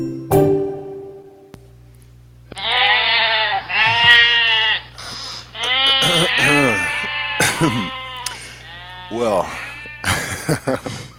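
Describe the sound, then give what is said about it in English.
Several goats bleat loudly and repeatedly in wavering, drawn-out cries that overlap one another, following a brief spoken word at the start and a low steady hum underneath. “Those are some non-racist goats.”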